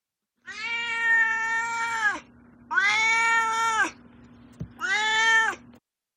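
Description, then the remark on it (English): A cat named Duarte meows three times in a row, each call long, drawn-out and loud, with short pauses between them and a faint steady hum underneath. “And now, although Duarte's been super chatty, which is his right because this is a very cat-heavy book, it's officially time for Duarte's Corner, where my cat Duarte will share his opinions.”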